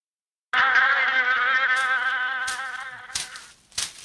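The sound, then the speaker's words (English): A steady high-pitched mosquito whine hums continuously for several seconds, slowly fading, with a couple of brief sharp clicks near the end. “you came home, you beat mosquitoes off of you to keep from going in.”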